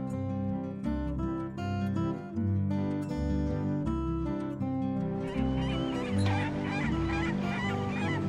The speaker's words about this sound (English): Seagulls swooped and squawked overhead. "What a racket," said Fender.